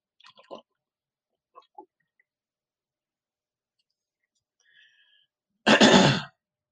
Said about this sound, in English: I gotta take a sip of water here. So grab your glass, take a sip.